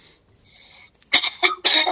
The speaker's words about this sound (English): As he coughs a lung.